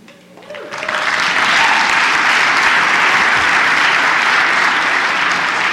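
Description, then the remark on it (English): An audience breaks into applause that swells within the first second into sustained, loud clapping from many hands, holding steady without a break until the end. “Don't clap yet.”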